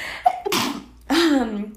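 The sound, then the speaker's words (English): A sharp sneeze bursts out after a quick inhale, followed by a second breathy, voiced explosive burst that trails off, loud with no talking. “I'm gonna sneeze”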